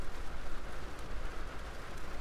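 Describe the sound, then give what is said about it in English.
Steady, heavy rain pours down in a dense, unbroken hiss with a low rumbling undertone and no voices. “I'm pausing because the rain is really loud right now.”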